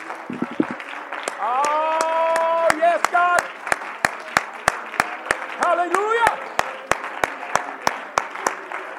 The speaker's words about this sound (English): Let's give him a hand clap of praise as you're seated here tonight. Thank you, Lord.